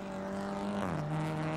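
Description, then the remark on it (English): The number 93 race car spinning out on the track directly in front of the number 2 car as it comes out of the pit lane, its loud, steady engine whine abruptly dropping in pitch midway through amid a rough, squealing wash of noise. No voices. “Okay, that's number 93 car that spun.”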